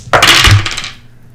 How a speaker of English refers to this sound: 15 for Grayson, rolling 2 dice